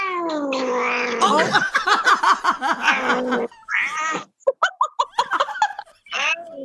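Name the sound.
cat yowling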